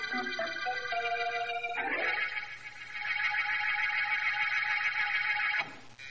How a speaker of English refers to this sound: And if it's all the same to you, please finish that little rhythm pattern you played on the buzzer just now.